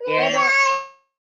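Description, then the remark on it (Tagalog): A young child who does not want to sleep cries out in a single loud, high-pitched wail lasting about a second, its strained tone holding steady before trailing off into silence. “Nandito kasi yung anak ko. Ayaw niyang matulog.”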